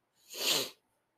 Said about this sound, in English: Sniffle, sniffle, sniffle.